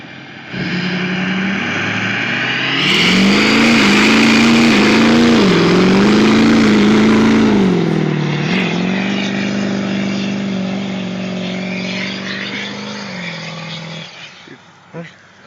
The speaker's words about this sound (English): So, guys, what I'm showing you here is that if I can take a diesel truck that's a stock truck, I did nothing else to the motor. All I did was take the computer out of the way, and I took the particulate catcher out of the way